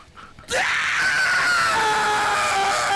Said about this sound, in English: Oh, here's the first one. The blonde one looked like a baby bird trying to get food from its mom. Give me your best metal scream.